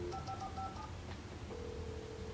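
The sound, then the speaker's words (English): In the video game Alan Wake, a quick run of about five touch-tone beeps as a phone number is keyed in to call the Bright Falls Sheriff Station, then a steady low hum of a line tone over a murky background rumble. “Oh, there's a phone.”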